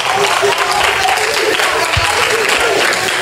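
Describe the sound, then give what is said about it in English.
An audience claps for God, steadily, dense and loud, the applause holding at an even level across the whole stretch, with no talking heard over it. “Come on, give God a clap for him.”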